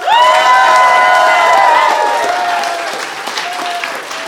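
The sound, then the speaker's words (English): An audience at the Laugh Out London Comedy Festival claps loudly and steadily for about four seconds to vote for one side in a comedy contest, with high cheers and whoops riding over the applause before it gradually eases off. “If you think Phil and Fanshawe, and therefore Alana, is in the right, applaud now.”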